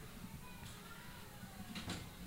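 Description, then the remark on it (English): A door is shut, with a brief sliding sweep and a soft closing thump near the end, over faint background murmur. “go shut the door.”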